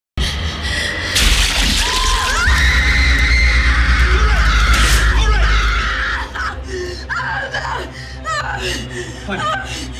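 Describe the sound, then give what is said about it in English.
Vera Farmiga lets out a long, shrill, blood-curdling scream in the horror film The Conjuring 2, holding loud and piercing for several seconds, then dissolving into shorter, broken vocal bursts and gasps. “Now, this one is a super awesome scream. Super creepy.”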